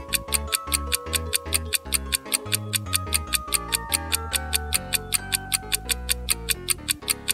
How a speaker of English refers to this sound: When the light illuminated the clock, the man noticed that it had stopped, but he could still hear ticking. It was the watch on his wife's hand.